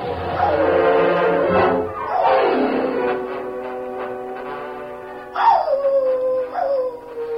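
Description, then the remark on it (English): Tin Cup's dog howls loudly in several long, mournful wails. The pitch rises and then slides down in each wail, with brief breaks between them. No one speaks. “We didn't get his dog, though. Listen.”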